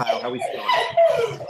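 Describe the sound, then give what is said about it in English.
A dog barks and yowls in a drawn-out, tonal burst lasting over a second, loud, with no one talking over it. “I think my dog surmises that perfectly. Right on cue.”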